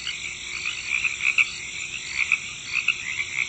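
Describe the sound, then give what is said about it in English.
A dense chorus of about 10,000 crickets released in a room chirping steadily, with shrill, overlapping trills that pulse in a quick rhythm and fill the space with no pauses or voices. “And then I released 10,000 crickets in my room to simulate the sounds of summer.”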